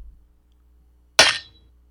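A single sharp knife chop on a hard cutting board while cutting chicken rings out with a bright, metallic clink and a brief ringing tail, loud, after a quiet pause with no talking.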